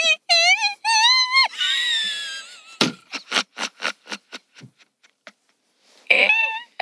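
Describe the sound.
A voice hits several very high, squealing whistle-register notes with rising glides and a long wavering hold, followed by a run of short sharp bursts, then one more brief high note at the end.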